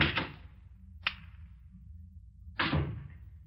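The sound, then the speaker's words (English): Someone fumbles with the door of a small guest cottage, making three sharp clunks and rattles at uneven intervals over a low, steady rumble, with no voices. “Lydia showed up while I was still fumbling with the door.”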